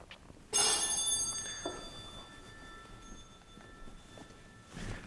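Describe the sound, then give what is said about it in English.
A bright bell strikes sharply and rings on with a shimmering, sustained tone that slowly fades, followed by a softer second ring near the end. “Move those bells.”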